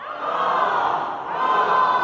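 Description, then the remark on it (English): A group of children, cued by the word "bird" during a story, yells loudly in unison, imitating a crow's caw twice in two long, bright, raucous shouts that swell and briefly dip between them. “All right, all of you over here, you guys are gonna be the bird, which means in the story, when you hear me say the word bird, you're gonna yell really loudly, caw, caw.”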